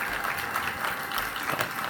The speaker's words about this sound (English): Give my applause right there.